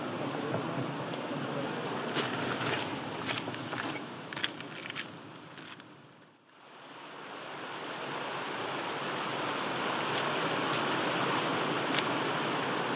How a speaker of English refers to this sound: I've just crossed Lingmel Gill, just at the point where there's a genuine confluence of streams, and the new path goes off to the right.